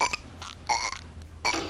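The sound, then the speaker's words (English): A loud, drawn-out burp by Bart in The Simpsons erupts in several raspy bursts, rising and falling in strength over a couple of seconds, with no one talking. “I'm still the burp champion of the world.”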